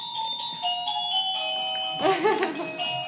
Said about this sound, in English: Excuse me while I answer the doorbell.